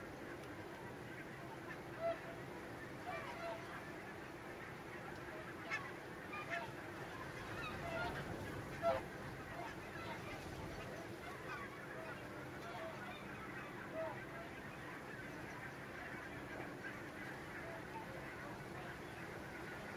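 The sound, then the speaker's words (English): A continuous chorus of honking whooper swans from a large flock as it is just beginning to get light, layered over a steady ambient wash, with occasional louder calls standing out from the blend. “They're hooper swans.”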